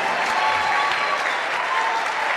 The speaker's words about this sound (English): Clap for yourself. Palmas para ti.